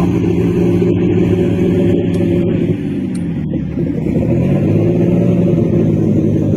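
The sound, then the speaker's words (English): A pulling tractor's engine roars and revs continuously as it backs up at Spencer, Iowa, its deep throaty rumble loud and steady with slight shifts in pitch, and no voices over it. “But this is one of my favorite videos of your tractor, because when you back up, you can see the big, beautiful ass on that tractor”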